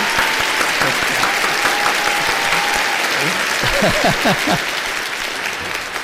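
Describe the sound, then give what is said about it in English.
Soundboard clapping and cheering effects clicked at the same time: dense applause plays steadily throughout, mixed with cheering voices that rise in brief whoops near the end, a loud continuous wash of clapping and shouting. “My soundboard only has clapping and cheering.”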